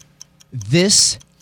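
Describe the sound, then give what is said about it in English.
A countdown clock with 10 seconds on it ticks steadily in quick, light clicks during round one of a game, while a voice lets out a loud, rising vocal sound over the middle of the ticking. “Okay, got 10 seconds on the clock. This is round one, and your time begins now.”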